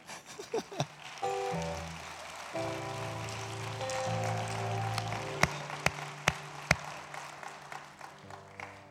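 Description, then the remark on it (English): An audience at a church service claps for the offering in a steady, dense, crackling wash while sustained organ-like chords shift underneath; a few sharper, louder claps stand out near the end. “You started to cheer. You started to clap.”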